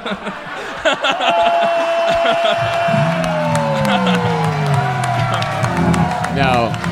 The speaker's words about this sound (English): Yeah, you can tell it's not because it led to a massive applause break.